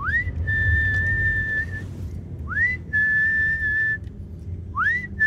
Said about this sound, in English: Often if they're all there waiting, they come running to this gate here. They recognise your whistle? Yeah, and the car.